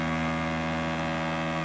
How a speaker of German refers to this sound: Und damit hören wir die Hupe.